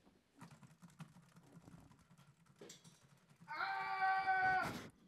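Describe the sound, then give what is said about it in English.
Rapid clattering of computer keyboard keys for a few seconds, fairly quiet, then a loud, shrill drawn-out cry, triggered by the typing, bursts in and cuts off. “Him screaming oh my gosh, that many keys just to make him scream. I think it was just this key that did it.”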